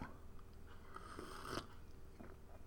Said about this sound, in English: I'm sorry, I'm sipping coffee.